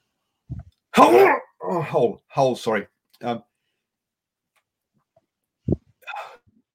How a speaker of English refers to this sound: Trying to find my mute there before so I can sneeze.